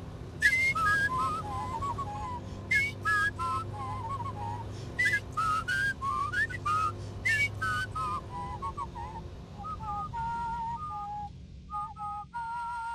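Two people whistle a lively tune together while driving down the windy back roads of East Cork, trading quick melodic phrases and then holding notes in harmony, clear over a steady low engine-like rumble.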